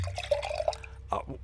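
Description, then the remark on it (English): Wine, a short mid-afternoon Sonoma pour, poured briefly into a glass, a quiet gurgling trickle with a faintly rising tone, ending in a few splashy glugs over a steady low hum. “A short mid-afternoon Sonoma pour.”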